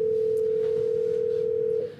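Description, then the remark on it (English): A phone line ringing through the earpiece on a call to British Columbia, Canada: one steady electronic ring tone holds for nearly two seconds, then cuts off, with a faint background hum and no one picking up. “He's not going to answer his phone.”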